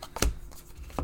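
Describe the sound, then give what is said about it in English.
A few sharp, dry clicks and brief rustles spaced unevenly as cards are shuffled during a card game, with a strong snap near the start and another near the end. “That's the shuffling.”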